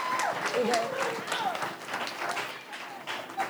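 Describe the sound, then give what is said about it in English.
Steady audience applause thanking guests after a conversation segment, filling the whole stretch, a dense wash of many hands clapping at a fairly loud, even level, with scattered voices and cheers mixed in. “Clap it up, clap it up, clap it up, clap it up.”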